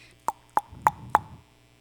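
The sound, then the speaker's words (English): A voice imitating knocking on a door: four short, evenly spaced percussive mouth sounds with a hollow, mid-pitched pop, each rising a little louder than the last. “Then two men knock on his door.”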